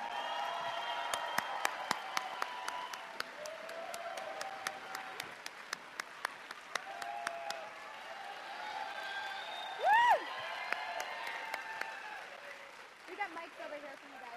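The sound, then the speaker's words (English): A convention crowd claps steadily as actors Gigi Edgley and David Franklin come on stage, while voices cheer and call out over the applause, with one loud, rising whoop standing out partway through before the clapping thins toward the end. “And they're going to come on stage, so let's give them a huge round of applause, everybody.”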